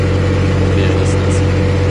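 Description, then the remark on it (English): A tractor engine runs at a steady, even pace as the tractor drives down a wheat field, its deep rumbling drone holding constant and loud throughout with a faint higher whine above it. “So he's basically driving his tractor down what used to be a field of wheat, I'm assuming.”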